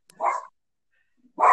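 A dog barks twice, loud, with a short silent gap between the two sharp barks. No one speaks.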